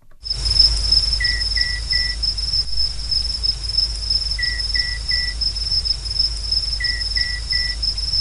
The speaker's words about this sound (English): Then you're going to have to set up recording equipment and record for a full month, which is what a group of Indigenous rangers did in Australia's Gibson Desert, and how they recorded the night parrot's distinctive call.